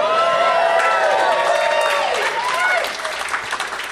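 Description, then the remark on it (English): A crowd applauds loudly, steady clapping mixed with shouted cheers and rising whoops, holding strong for several seconds before easing off slightly at the end. “But I could get another round of applause while I'd be saying I'm not going to move here.”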